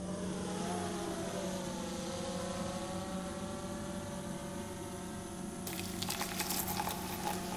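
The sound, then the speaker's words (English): A steady, droning propeller buzz hovers, its pitch gently shifting as a Starbucks coffee delivery drone flies in, then a brief clattering rattle breaks in near the end. “Summoning the coffee drone.”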